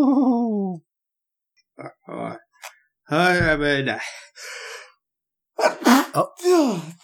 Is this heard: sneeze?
yes